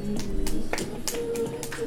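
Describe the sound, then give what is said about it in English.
Hands clap about six times in a steady, moderately paced rhythm. Each sharp slap stands out over a low, faint background hum, and no one speaks. “He was clapping.”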